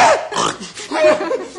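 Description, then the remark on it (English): A person mimics a horse whinny, a loud, wavering nasal neigh with rising and falling pitch glides that lasts under two seconds, with no other voices. “See, I'm a horse.”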